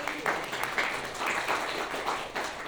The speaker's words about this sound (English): A wonderful round of applause.